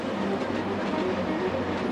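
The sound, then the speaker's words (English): A train rumbles steadily along railway tracks, a continuous low roar with faint tonal hums and a dense, even texture throughout, moderately loud with no voices. “We have to imagine him lying in bed as a teenager, listening to the trains behind the house and thinking about his future.”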